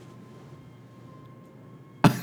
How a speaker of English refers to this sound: So in the background right now, it sounds like we're in a dentist office with the drilling that's going on. Listen, everybody quiet and just listen.